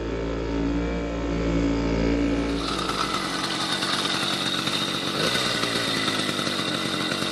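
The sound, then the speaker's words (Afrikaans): A small motorbike engine idles with a low, steady buzz, then revs up into a loud, raspy two-stroke whine that keeps running, with no talking. “Nou, hierdie motorfietsie van jou, as jy nou moet sê, jy weet, een mens praat altyd van, jy weet goed wat duur kos en so, is dit nie dalk iets wat mense kan bou en in 'n goedkoper vorm van vervoer vir hulle self kan maak nie?”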